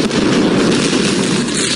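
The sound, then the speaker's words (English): A loud, sustained explosive roar fills the whole stretch, dense and rumbling with no break or voices: the thunderous blast of the deadly explosion in Beirut, one of the biggest non-nuclear explosions in history, equivalent to a 3.3 magnitude earthquake. “Last week's deadly explosion in Beirut was one of the biggest non-nuclear explosions in history, the equivalent of a 3.3 magnitude earthquake.”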